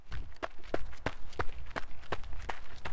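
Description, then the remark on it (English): Quick, steady footfalls of students running on a hard road in a prayer run, about three sharp strikes per second, fairly loud over a low, constant outdoor rumble. Nobody speaks. “The run is about having human footsteps cover the entire distance in prayer.”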